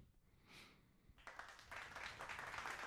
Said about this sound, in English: Yeah. Like a mediocre cheer. That's like I feel like a kid did well at a play, but like not well enough to impress anyone.